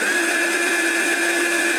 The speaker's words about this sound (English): So one morning, I stepped out of the shower, dried off, picked up the hairdryer, increased the speed.